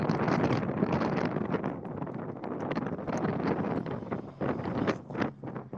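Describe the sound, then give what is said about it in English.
Wind buffets a microphone on a windy day in a steady, loud roar of rumbling gusts that swell and dip throughout, with no voices, only the rough, blustery noise of air hitting the mic. “Man, I am really enjoying this win today, you guys.”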